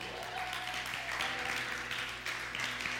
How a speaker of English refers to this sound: How y'all doing? Some new people in the crowd. Let's give them a hand.